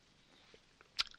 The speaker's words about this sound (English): So we're going to get to all that right after this, and then, of course, my signature drink of water. All right. Are you ready to hear me hydrate?